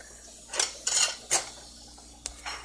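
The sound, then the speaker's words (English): Dishes and cutlery clatter as they are washed, in a few sharp bursts of bright clinks and scrapes, with short pauses between them and a faint steady background hum. “My mom's gonna be like, I haven't even got close to finishing these dishes.”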